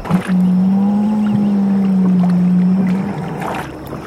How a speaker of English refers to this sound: I could swear I heard the sea moaning, as if a ghost was beckoning me to come closer.